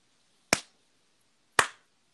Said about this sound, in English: Can you hear me slow clapping? Yeah, I also think that also stands in as you, like, slapping me repeatedly.